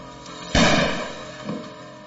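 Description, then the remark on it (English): A handgun goes off accidentally inside a family home during a home invasion, a single sudden, loud crack that rings out and slowly fades, followed a second later by a fainter, duller echo-like thump. No one speaks. “The handgun had gone off accidentally.”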